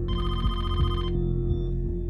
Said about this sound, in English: Just as she was getting into a groove, she was interrupted by the phone. It was the studio security calling to let her know she had a visitor.